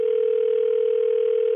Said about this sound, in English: So I had to call her up and find out more about what's going on with her. So I got the phone ringing.